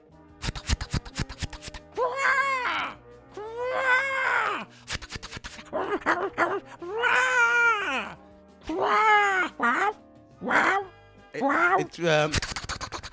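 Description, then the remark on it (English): A seagull calls loudly, giving a string of about seven wailing, yelping cries in uneven bursts, with sharp clicking knocks at the start and end. “I just have a seagull vocal. Is the answer. Yes, is the answer.”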